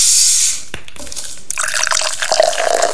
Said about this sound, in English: Oh, here you go. Let me pour you a drink.